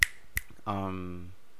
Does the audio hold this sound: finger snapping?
yes